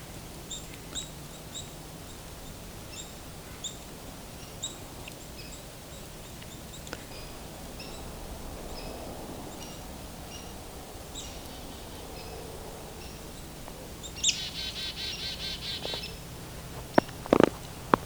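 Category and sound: bird, black-capped chickadee whistled song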